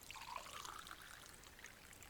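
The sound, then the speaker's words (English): Water trickles and pours steadily into a glass for a couple of seconds, a soft splashing stream with a faint rising tone as it fills. No voices. “I could go for some water. That is better.”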